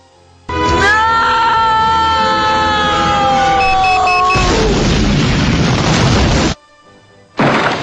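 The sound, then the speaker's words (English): An explosion sound effect: a descending whistling tone gives way to a loud, roaring blast that rumbles for about two seconds, then cuts off abruptly before a second burst begins at the very end. “Oh, you want explosions before Tank Girl? I got one for you here.”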